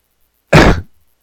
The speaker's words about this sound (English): And sorry I coughed there.